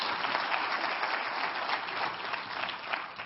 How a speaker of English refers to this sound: You ought to clap your hands and give the Lord some thanks here.